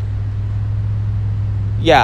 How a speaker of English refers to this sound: This truck better not hit Maureen.